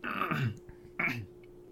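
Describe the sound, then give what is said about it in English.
Two rough throat-clearing rasps from something stuck in the throat, a longer one followed by a shorter one after a brief pause, with no talking around them. “I was clearing my throat.”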